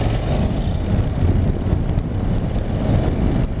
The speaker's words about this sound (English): It's got a twin engine, this one, but it's got a lovely grunt to it. Lovely exhaust sound. Part of me is thinking, well, it'd be good to get a can on it, and it would sound even better then.